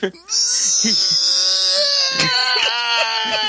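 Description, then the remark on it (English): A person lets out a long, shrill, screeching scream imitating a pterodactyl, held loud and steady for about three seconds with a harsh, wavering high pitch. “Pterodactyl scream.”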